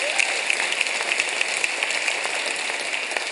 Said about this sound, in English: Give the Lord a round of applause.